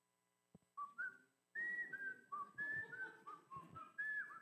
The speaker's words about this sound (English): I thought my whistling was better.